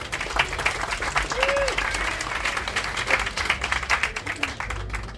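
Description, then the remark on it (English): An audience at a poetry reading applauds steadily for a poet about to read from his debut collection, Physical. Many hands clap in a dense, crackling wash that holds at a fairly even loudness throughout, with faint murmuring voices mixed in underneath. “It was one of my bosses that started that applause, but that was nice anyway.”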